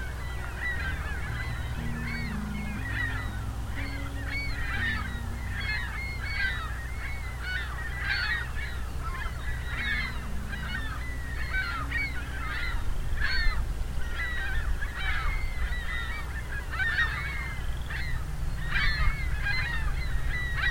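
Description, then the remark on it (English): A large flock of ring-billed gulls calling constantly as it flies and changes direction, many overlapping sharp cries in a busy, continuous chorus over a low steady rumble, with no talking. “Ringbill gull calls.”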